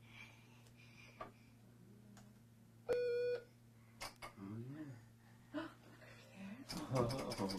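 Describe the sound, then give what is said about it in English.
A single clear electronic beep tone of a hearing test given by an audiologist sounds for about half a second over a steady low hum, followed by faint voices, clicks and rustling toward the end. “responded to a beep, the audiologist would light up a box that had either a dancing dinosaur or a dancing dog.”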